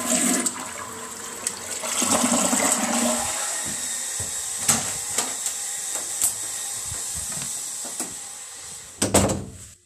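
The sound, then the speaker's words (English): A toilet flushes with a loud rushing swirl of water that settles into a steady hissing refill, punctuated by a few sharp clunks and a final rattling thud near the end. “Press back to flush.”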